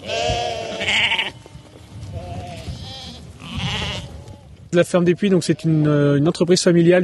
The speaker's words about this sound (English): a sheep farmer, calls to a herd of his sheep at his family farm, Ferme du Puy, near the town of Dreux in France's Centre region.